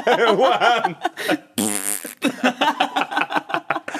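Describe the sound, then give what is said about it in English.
A voice blows a loud, buzzy imitation of a fart made in the middle of a Tai Chi class, lasting about half a second, with rhythmic bursts of laughter just before and after it. “Really loud fart right in the middle of Tai Chi class.”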